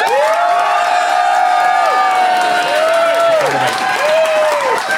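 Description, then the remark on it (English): A crowd bursts into sustained applause and cheering as an audience vote, steady clapping filling the whole stretch while high whoops and shouts rise and fall over it, loud throughout. “please applaud now.”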